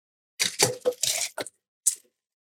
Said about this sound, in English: So in your ice bucket, use the scoop and load up your shaker. The top? I might say go at least halfway.